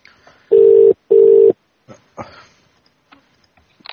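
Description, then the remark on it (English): A telephone ringback tone on a call placed from a live radio show gives two short, steady buzzing pulses in quick succession, the classic double ring of a line waiting to be answered, followed by faint clicks and rustles as the phone is picked up. “Sorry, we've just gone on air at the exact time you picked that phone up.”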